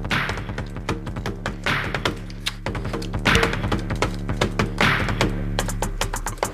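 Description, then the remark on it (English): A pre-recorded electronic drum beat triggered on a V-pad: steady thumps and taps with bright, hissy snare-like hits about every one and a half seconds over a droning low bass, no voices. “Hit the, try to, like, hit the V-pad without, like, it. A pre-recorded beat real quick.”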